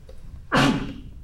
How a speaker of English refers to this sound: You sneezed. Bless you.